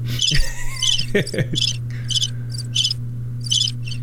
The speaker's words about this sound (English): Crickets.